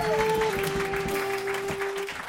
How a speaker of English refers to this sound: You fuckers are done clapping? Are you serious?